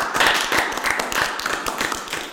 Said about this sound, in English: So we want to give you a big round of applause for coming.